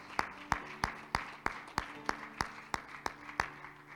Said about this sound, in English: And how can we give God another hand clap of praise today?